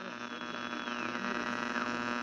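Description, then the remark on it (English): A steady electrical hum fills the line, dense with buzzing harmonics and faint whistling tones that slide up and down, with no voices, continuous and fairly loud throughout. “A little interference here”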